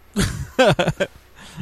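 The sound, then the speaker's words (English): A male cat meows loudly, a quick run of three or four short, wavering calls following a brief rough breathy sound, with no talking underneath. “Kitty, are you sitting on my phone?”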